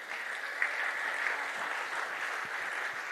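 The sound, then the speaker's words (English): An audience gives God a clap offering, clapping together in sustained, dense applause, many hands blending into a steady wash of sound with no pauses and no voices over it. “Go ahead and give God a clap offering.”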